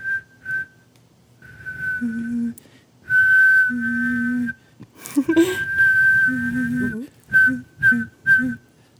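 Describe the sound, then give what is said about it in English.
A person whistles in a series of steady, sustained tones with short gaps, some notes held long and others clipped, mimicking a train whistle; a few breathy bursts mix in. “and it sort of sounds like a train whistle.”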